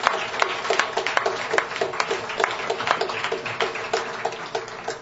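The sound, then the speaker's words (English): An audience applauds steadily, a dense patter of many overlapping hand claps with sharp bright transients, sustained at an even level throughout without any voices standing out. The applause is for the Hideaway, which donated its space for the project. “So big round of applause for the Hideaway.”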